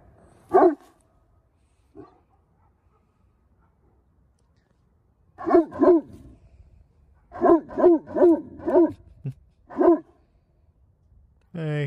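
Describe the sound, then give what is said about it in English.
A large dog, a Great Pyrenees livestock herding dog, barks deep and loud while stamping its foot on the ground: a single bark, a long pause, then a pair and a rapid run of five or six booming barks. “And last about their description is their bark, which I have a video of.”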